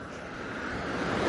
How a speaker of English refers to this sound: Well, I decided to start the recording at the start of the bridge, so I'm now on the bridge walking up. It's quite arched, so it's quite a climb. And as you can probably hear, it's very busy with traffic.